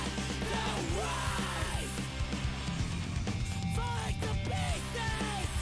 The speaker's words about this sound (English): That chorus, in case you didn't pick it out, was winding up, leading me, winding up to explode. So I think that tells us. I don't think there was a chorus there. I think that was just a just a group of people yelling.